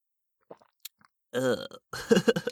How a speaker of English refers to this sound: I'm going to take a sip of the liquid.